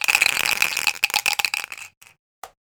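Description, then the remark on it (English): Dice rattle and clatter across a hard surface in a dense burst of sharp clicks, then slow to a few scattered taps before settling on a two. Fairly loud, no voices. “Roll the dice.”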